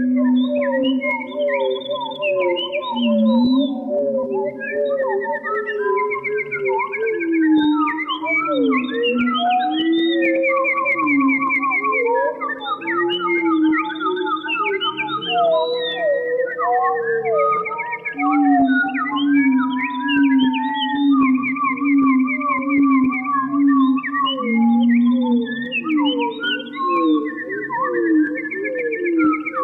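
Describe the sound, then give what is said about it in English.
An electronically manipulated composition of bird calls recorded in the forests of Quebec province, layered into a dense, steady weave of warbling whistles, trills and sliding chirps at many pitches, with lower drawn-out tones running beneath and no talking. “uses a little studio wizardry and electronic manipulation to deliver this composition of bird calls recorded in the forests of Quebec province.”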